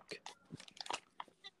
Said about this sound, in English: Are you munching? Nah, my man.